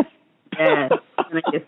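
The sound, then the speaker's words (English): A fairly loud cough from a person who is sick: one drawn-out, rough voiced hack followed by a quick pair of shorter coughs, with no talking around it. “Need to sip on some honey for that cough, tea, honey.”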